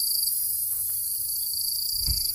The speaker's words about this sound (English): He just held up his cell phone and played crickets on there.